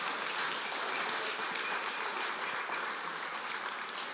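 A crowd applauds steadily, a dense, even wash of many hands clapping that holds at a fairly loud level for the whole four seconds with no voices over it.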